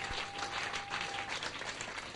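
An audience claps together, many hands blending into a dense, steady wash of applause that holds at an even level for about two seconds with no voices over it.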